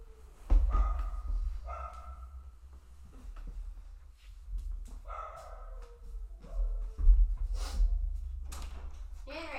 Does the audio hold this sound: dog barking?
yes